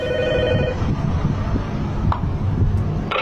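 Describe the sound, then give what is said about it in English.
An intercom buzzer at a block of flats, pressed by a delivery driver, sounds a steady electronic tone for under a second, then gives way to a crackly, hissing line broken by a few sharp clicks. No one speaks. “There's one particular driver who says he doesn't need to say words when he buzzes at blocks of flats, and he basically talks absolute gobbledygook and people still let him in, as you will hear in this clip.”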